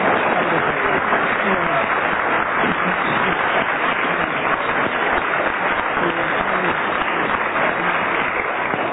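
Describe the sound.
A studio audience claps steadily for the full nine seconds, deciding by applause whether contestants gave a rational explanation, a dense, even wash of applause with some crowd voices faintly mixed in.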